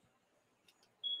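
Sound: smoke alarm beeping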